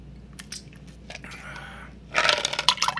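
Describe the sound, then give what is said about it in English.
Water pours into a glass, a brief gurgling stream followed by a louder burst of crackling and popping, like ice reacting, with no talking. “Oh, that's water.”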